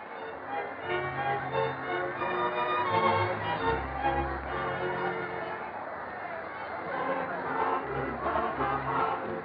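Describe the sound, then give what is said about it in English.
A crowd cheers and shouts steadily for several seconds while dancing and celebrating, a dense, loud mix of many voices with bursts of whooping rising and falling throughout. “They're dancing and cheering.”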